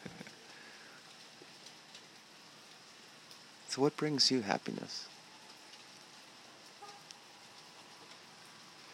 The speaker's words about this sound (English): Well, the rain keeps falling. So let's just listen to it for a while.